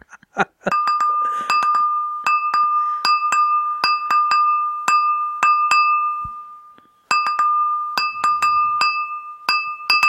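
A drinking glass is tapped repeatedly to play the tune of a Christmas song, each bright clink ringing out with a sustained tone, pausing briefly before the tapping resumes. Clear, with no talking.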